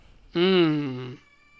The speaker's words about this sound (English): As our cat screams.